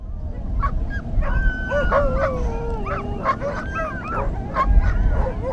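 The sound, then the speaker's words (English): A crowd of sled dogs barks, yips and whines excitedly at once before the 50-mile Holiday Classic sled dog race at Charles Family Lake, with 14 teams out in the bitter cold; overlapping high-pitched cries fill the air over a steady low outdoor rumble. “Some dogs jostled around inside their hay-filled kennels while being dragged by a snow machine from nearby tundra villages.”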